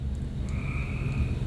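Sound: crickets chirping sound effect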